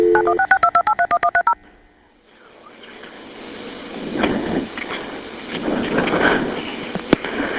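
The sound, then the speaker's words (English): A rapid series of about a dozen telephone keypad tones beeps out in quick, even succession as Monroe 911 dials a dispatch call for an ambulance seconds after Ricky Keaton was shot around 1 a.m., then gives way to a hissy, rumbling line noise that swells and fades. “This is a dispatch call made seconds after Ricky Keaton was shot around 1 a.m.”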